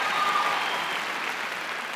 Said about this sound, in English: Hey, your clapping is very half-hearted tonight. It's not flowing.